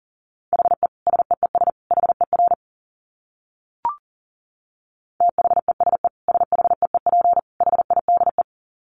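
Fast Morse code at 40 words per minute, keyed as a steady mid-pitched beep in rapid dits and dahs, two bursts separated by a pause with a brief click between them. No voices.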